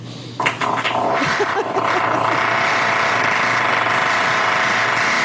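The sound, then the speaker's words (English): A loud, drawn-out fart with a buzzy, sputtering start that settles into a steady rumbling blast, holding for several seconds without fading. “Fart's even bigger.”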